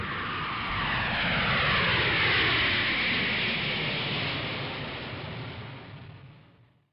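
propeller airplane engine

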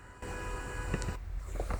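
car horn honking

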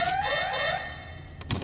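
alarm going off

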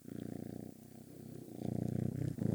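cat purring loudly

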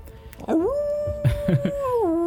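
wolf howling

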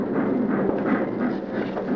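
train

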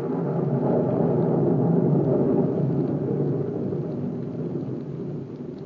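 rain falling

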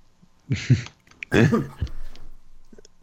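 cough

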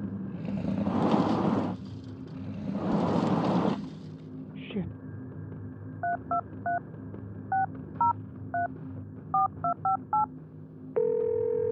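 telephone keypad dialing tones

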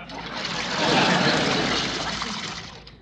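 drinking fountain water running

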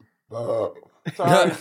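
burp

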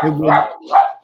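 dog barking

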